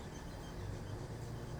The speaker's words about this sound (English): Somebody really needs to get their car worked on.